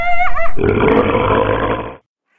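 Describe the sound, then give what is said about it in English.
A turkey vulture's harsh, raspy hissing grunt, one loud rough sustained rush lasting over a second before stopping abruptly, preceded by a brief warbling tonal note. No one speaks. “No, honey, that's just a turkey vulture.”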